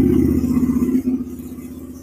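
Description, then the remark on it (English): A motorcycle engine drones loudly, a strong low rumble that gradually fades as it passes by, with no voices. “Okay, wait, there's a motorcycle going past.”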